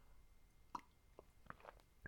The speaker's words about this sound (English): Oh my goodness, what a word. Let me have a sip of coffee as I stumble my S's.